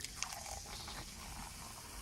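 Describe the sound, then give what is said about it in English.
Coke poured from a can, a steady fizzy hiss and crackle of bubbles lasting a couple of seconds, fairly quiet, with one small click near the start. “That's Tony pouring a can of Coke.”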